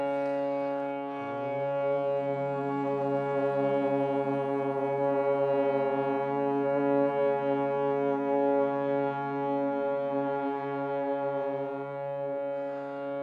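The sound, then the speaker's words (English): A low, steady hummed note, the start of chanting the mantra Om, held for the full thirteen seconds, with a slight dip in pitch near the start, then an even, resonant drone with no talking. “We'll start just by humming the note.”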